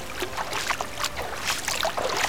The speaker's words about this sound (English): Not far to his right were the calming sounds of a noticeably large waterfall.